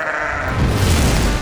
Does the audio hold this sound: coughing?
no